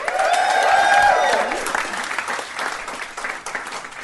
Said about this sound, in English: Okay. We're all Babe Bros and it is Babe and good to be here at the European Beer Cafe. Now, give us a round of applause if you've ever heard the podcast before.